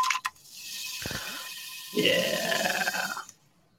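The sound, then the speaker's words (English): A steady fizzing hiss of soda bubbling runs for a few seconds and then swells into a louder gurgling burst before cutting off. No one speaks. “Sorry, I just wanted to get the bubbles when I sewed on there. I thought it sounded good.”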